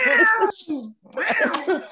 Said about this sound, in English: Wasn't that cat said, meow, meow, meow. Look at that.